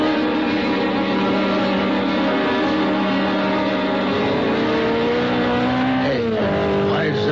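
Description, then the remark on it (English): A sports car that looked like a Simonetti, doing close to 90 or 100 and heading west on Trumbull, roars loudly and steadily at high revs, then its pitch swoops and shifts near the end as it races past. “The sports car looked like a Simonetti. I couldn't tell. Went by me too fast.”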